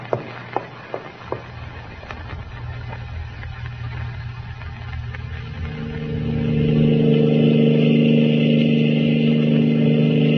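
A car engine hums steadily as the vehicle drives along, with a few sharp clicks early on, then the motor swells louder and higher as it accelerates, holding a strong revving drone to the end.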